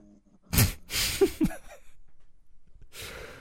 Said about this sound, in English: that's snoring.